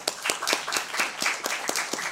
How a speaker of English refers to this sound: By show of applause, let's just get this practice. I'd like to see what side of the debate people are on. How many people believe that the libertarian moment was simply wishful thinking? By applause.